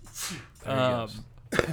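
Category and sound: human body sound, sneeze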